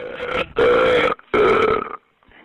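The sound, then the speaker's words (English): A man burping into a phone call to 911: three drawn-out, loud burps in quick succession, the first shorter and the next two long and rumbling, with a faint trailing sound after a brief pause. “The problem is he keeps calling and burping into the”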